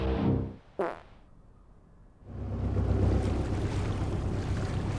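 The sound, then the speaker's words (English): A short, rasping fart from a man settling into sleep on a cold mattress bursts out near the start amid low rumbling, then fades into a quiet lull before a steady, loud wash of wind and surf takes over. “returns from his shift, yanks on the chain of his tie veg before shuffling towards bed, draining the dregs from a can of Boddington's, groaning down to his cold mattress, ready for a long, fermenting, flatulent slumber.”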